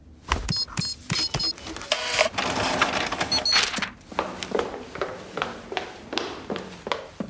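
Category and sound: machine, printer printing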